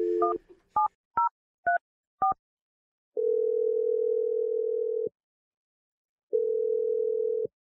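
A quick run of five touch-tone dialing beeps as a phone number is dialed to place a call, then two long, steady ringing tones separated by a short pause, clear with no voices.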